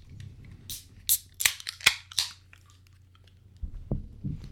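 A beer can is cracked open: several sharp metallic snaps and short fizzing hisses in quick succession, then a couple of dull, soft knocks. No one speaks.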